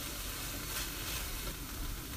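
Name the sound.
shallots sizzling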